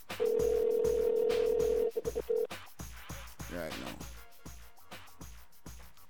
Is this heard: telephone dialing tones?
yes